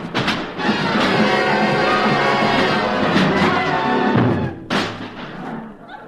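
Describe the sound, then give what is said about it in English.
Loud, chaotic clanging and crashing of a band's musical instruments being banged over someone's head, a jangling din of brass and percussion that surges, briefly drops, then crashes in again with a sharp hit. No voices. “If you don't shut up, wise guy, I'll bang you over the head with every instrument in my band.”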